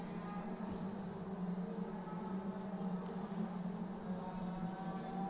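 A race car's exhaust during a motor race drones at a steady low pitch with layered tonal harmonics. The quiet, even rumble runs without pause and shows no clear rise or fall as it passes.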